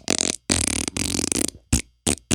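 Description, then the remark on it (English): A loud, sputtering fart stretches over about a second and a half in several rough bursts, followed by a few short, gruff blasts like a burp. No one speaks. “There's your fart that you wanted. All right. And there's your burp.”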